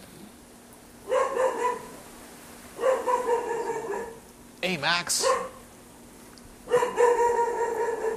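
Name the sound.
dog barking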